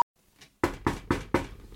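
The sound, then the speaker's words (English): Four quick, evenly spaced knocks of knuckles on a wooden desk, each a sharp hollow rap with a short decay, following a faint click and near silence. “Yeah, I was just knocking on my desk.”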